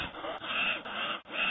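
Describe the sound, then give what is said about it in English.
Heavy, rasping breathing with no talking, about four loud breaths in quick succession, each a harsh, airy rush separated by brief pauses. “Yep, that was heavy breathing you heard.”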